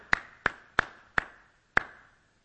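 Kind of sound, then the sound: human body sound, slow sarcastic hand clapping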